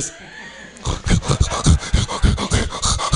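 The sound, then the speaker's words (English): A voice imitates a pug's wheezy, snorting breathing, a rapid string of rough, congested snorts and snuffles, loud, following a brief quiet moment. “There's nothing natural about the way a pug breathes.”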